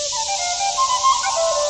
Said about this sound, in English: It looks like he's playing a whistle.